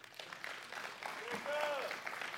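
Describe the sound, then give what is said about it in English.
An audience claps steadily, a dense wash of many hands that holds at an even level throughout, with scattered voices and a brief rising-and-falling cheer mixed into the applause. “Give them a hand clap.”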